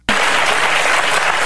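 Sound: clapping applause sound effect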